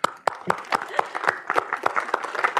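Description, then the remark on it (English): An audience at a live Non-Breaking Space show breaks into applause welcoming a guest, a dense, steady patter of many hands clapping at moderate loudness with sharper individual claps standing out throughout. “Let's give a round of applause for Gina Bolton.”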